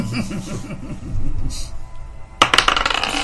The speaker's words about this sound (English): All right, so I'm going to roll the new dice.